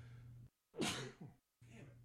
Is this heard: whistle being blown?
no